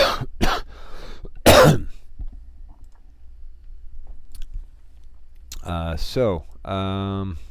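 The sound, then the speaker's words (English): A few sharp coughs burst out near the start, then a quiet stretch, followed by a couple of voiced, throaty noises like someone clearing their throat. “Excuse me a sec here. I cough.”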